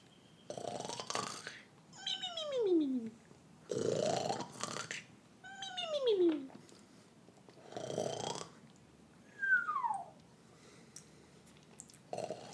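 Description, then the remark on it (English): A voice imitates cartoon snoring, alternating rough, breathy snores with high whistling exhales that slide downward in pitch, repeated about four times in a steady rhythm. “But, you know, do a little cartoon snoring so I know that you're sleeping.”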